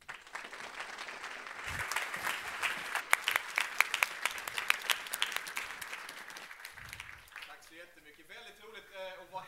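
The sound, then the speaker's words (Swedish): An audience gives a warm welcoming applause for the evening's guest, Gustav Fridolin, with dense, steady clapping that builds, then thins out after several seconds as a man's voice begins speaking. “Och med det sagt så vill jag be er ge en varm applåd till Gustav Fridolin.”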